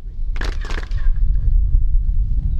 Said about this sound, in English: The pyramid at Chichen Itza towers over the landscape. Sound echoes as tour guides clap to demonstrate the extraordinary acoustics of this sacred place.